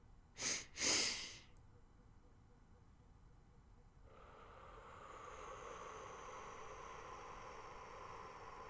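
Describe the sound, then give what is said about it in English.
Two brief breathy bursts open, then after a pause a long, slow, deep inhalation: a soft airy hiss that swells gently and keeps drawing in steadily to the end, as part of a guided breathing exercise. “Inhale.”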